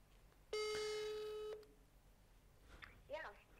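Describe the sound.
A single loud, steady telephone ringing tone with a buzzy, harmonic-rich pitch lasts about a second as a call is placed to a running coach, then cuts off. Faint speech follows shortly after.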